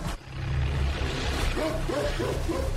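A dog lets out a few short, yelping barks in quick succession, set against a steady low rumble that runs throughout; the barks are not loud.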